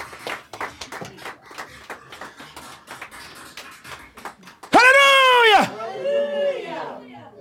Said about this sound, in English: Clap for Jesus. Thank you, sir.